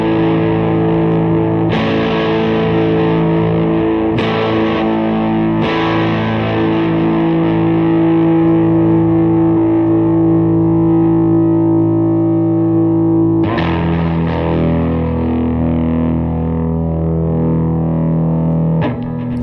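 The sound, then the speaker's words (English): Overdriven electric guitar, played through a tuner, EVH-50 overdrive, Siren Anvil compressor, MXR Blue Box, Ibanez Chorus and MXR Carbon Copy pedals, rings out in loud, sustained chords, struck about five times with long, smooth decays and a shimmering effected tail, with no voices. “Let's see, I've got a tuner going into an EVH-50 overdrive, going into the Siren Anvil compressor.”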